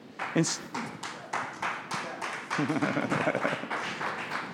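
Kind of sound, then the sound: crowd, someone clapping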